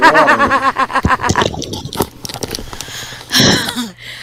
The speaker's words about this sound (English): I was drinking water.